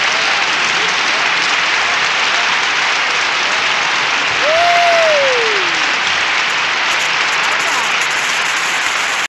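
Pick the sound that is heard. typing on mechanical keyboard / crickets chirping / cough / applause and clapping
applause and clapping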